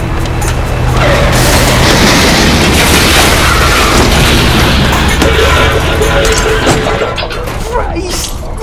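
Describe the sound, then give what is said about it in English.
A car smashes through a pile of other cars: a sustained, loud roar of crunching metal, booming impacts and shattering glass lasting several seconds, fading a little at the end. “Hold on, I'm going through the wall of cars.”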